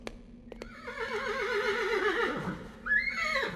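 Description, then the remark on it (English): A horse whinnies loudly, a long quavering neigh that slides downward in pitch, followed by a shorter, higher second call. A couple of sharp knocks come just before. “It's at this point you see a horse walk round the corner.”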